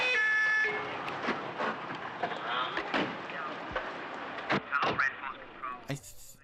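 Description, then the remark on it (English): A police car arrives with its siren wailing through a busy, cluttered scene, its rising and falling tone cutting in and out among thumps, clatter and indistinct voices. “I think that police car that just arrived and one of the non-uniformed officers that just got out actually was seen walking by the studio earlier as a different character.”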